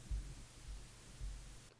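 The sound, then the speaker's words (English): Soft, low thumping murmurs for nearly two seconds, then a single sharp, loud hand clap at the very end, several people's claps landing together as one crisp crack. “That was pretty funny because the first time I heard just one clap and I was like, oh my gosh, it was so synchronized”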